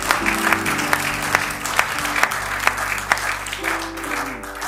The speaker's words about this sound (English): Did you appreciate the word of God this morning? Give the Lord Jesus a hand clap of praise. Hallelujah.